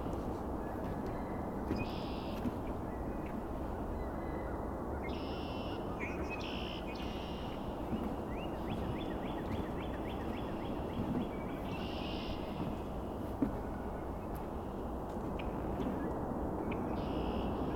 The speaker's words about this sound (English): This is only a handful of red-winged blackbirds. If we were here at sunrise or sunset, it would be 100 times as more here, probably. They're a very, very common bird, though.